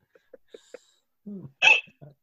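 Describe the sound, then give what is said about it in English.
A voice imitates a flapping fart: four quick, evenly spaced puffs followed by a longer, louder blubbering burst, fairly quiet. “And when I fart, it goes flippity flip flip. Like a sail.”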